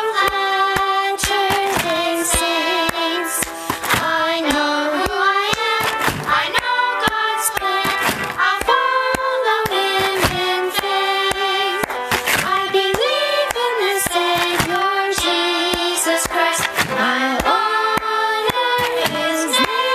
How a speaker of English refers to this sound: And I totally forgot to say the clap stomps.